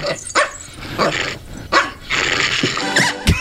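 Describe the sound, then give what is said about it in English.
A small Pomeranian dog yelps and barks after being kicked, a rapid series of sharp, high-pitched cries, loud, with a few short bursts packed into a few seconds and no one talking. “So the dog's just been punted.”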